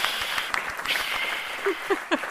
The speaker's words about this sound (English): Insert ghost clapping here. Yay!